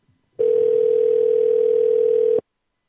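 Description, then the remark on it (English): A steady, loud telephone dial tone, heard while placing a call to King Supers, holds one unbroken pitch for about two seconds, then cuts off abruptly, with no voices over it. “One moment, please. Make your phone call.”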